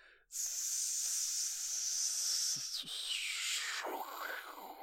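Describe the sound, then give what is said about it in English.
Someone imitates a snake with one long, loud, steady hiss held for about three seconds, which then slides into a lower, rougher breathy exhale. There is no talking. “Hey, snake. How you doing today? 1 second. I'll ask him.”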